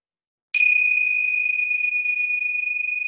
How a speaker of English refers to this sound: So just a moment then. I'll just ring a bell, so we just know the beginning and the end of it, and it's just for a minute.